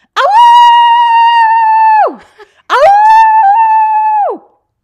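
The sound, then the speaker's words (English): A person loudly imitates a dog's howl twice in a row, each a sustained, wavering two-second wail that swoops up at the start and drops off at the end, with no talking. “Speaking of sex, he's a 10, but he howls like a dog every time he comes.”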